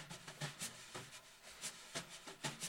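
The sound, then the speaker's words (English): Wire brushes swish across a snare drum in a steady shuffling rhythm, soft hissy sweeps punctuated by regular brighter taps, with no voices. “And so what I did is I used a snare drum, but instead of drumsticks, I used brushes, which you kind of sweep across the head of the drum to get that sort of like sound.”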